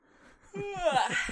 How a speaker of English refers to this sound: I yawned.